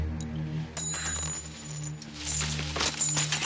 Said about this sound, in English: So as a distraction, he takes a candelabra and somehow manages to insert coins into the candles, the lit candles of the candelabra, so that as the candles burn down, periodically the coins will drop and make a noise.